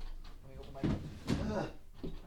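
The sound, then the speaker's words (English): A door is opened, with a couple of solid clunks and a rattle of the latch and hinges, while a faint, muffled voice murmurs in the background. “But let me open this door.”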